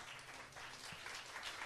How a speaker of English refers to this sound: I don't know why y'all clapping. That's not the end of it.